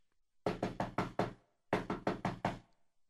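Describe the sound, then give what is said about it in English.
Two sharp bursts of knocking on a general's door, four raps in each, loud, separated by a short pause. No voices are heard. “And so there was a knock on the door of the general.”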